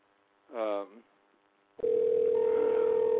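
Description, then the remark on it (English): An outgoing call dialed from a live radio show's phone system: a steady electronic ringing tone starts abruptly and holds loud and unbroken to the end. A brief voiced murmur comes before it, with quiet gaps between. “Well, it's working. We can hear it ringing.”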